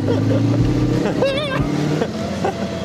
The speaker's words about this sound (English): So, this car we're driving, John, is from the 1930s, is that right? 1930s. And so this is like 20 years on, technology-wise, from Percy's car.